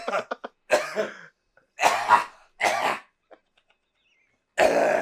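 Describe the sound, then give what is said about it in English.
A loud run of coughs and throat clearing: a few quick hacking bursts, then several heavier separate coughs spaced by short pauses, with no talking. “My fucking just coughing the whole time.”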